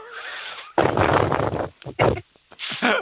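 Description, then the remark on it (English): A voice imitates howling wind with loud, breathy whooshing bursts: one long gust, then several shorter rushes separated by brief pauses, with a rough, grunting edge. “Is that, are you doing sound effects now of the wind?”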